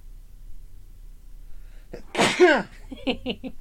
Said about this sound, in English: Hang on, I gotta sneeze.